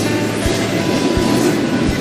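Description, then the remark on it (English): A unit freight train rolls past, its steady loud rumble punctuated by evenly spaced heavy thumps as wheels cross rail joints, roughly every three-quarters of a second. No voices. “This recording of a unit train comes from a YouTube video posted by someone called Illinois Valley Railfan.”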